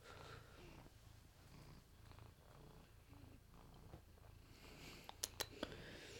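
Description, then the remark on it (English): A cat purrs steadily, a low rumbling rhythm pulsing in and out with each breath, with a few sharp little clicks near the end. “You happy podcat? No, you're an unhappy podcat. Do you want to leave?”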